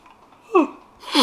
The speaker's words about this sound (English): Oh, I'm yawning.